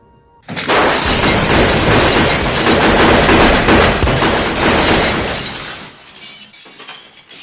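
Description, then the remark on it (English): A rapid burst of gunfire shatters window glass at night, shots fired through the window in an attempt on the lives of a couple lying in bed: a loud, dense crackle of shots and breaking panes for about five seconds before fading into scattered tinkling debris. No one speaks. “Shots come through the window, and he ducks himself and Kay mm-hmm.”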